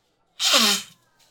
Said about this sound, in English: Sorry, blowing my nose